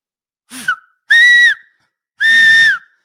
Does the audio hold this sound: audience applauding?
no